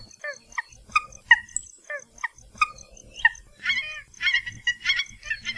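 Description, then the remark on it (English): Nene (Hawaiian geese) give a series of soft, nasal honking calls, spaced at first and then overlapping into a busier, chattering stretch, moderately loud with no talking. “You can now occasionally hear the honking calls of the nene on most main Hawaiian islands, especially if you're near ponds or grassy fields.”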